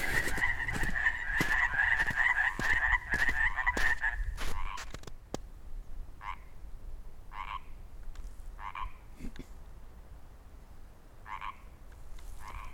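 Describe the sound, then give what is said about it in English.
A dense chorus of frogs croaks in rapid pulsing bursts for several seconds, then thins out to a single frog calling alone in short, spaced croaks over a quiet outdoor background, in a place with about a meter of snow on the ground. “See, that guy over there that's still croaking, is that what we should call it?”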